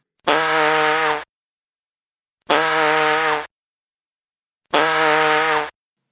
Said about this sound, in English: we'll throw in the Sam Kinison Scream Fart ringtone absolutely free